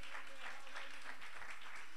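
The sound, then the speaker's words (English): A crowd breaks into sustained applause, many hands clapping together in a dense, steady wash, with faint voices mixed in underneath. “Give him a great big hand clap.”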